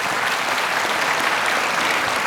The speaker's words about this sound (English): He won't be alone. There will be many people who, if you want to applaud that, you can.